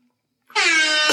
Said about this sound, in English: Just gotta give y'all a quick air horn.